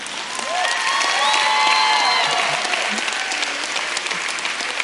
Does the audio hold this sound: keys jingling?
no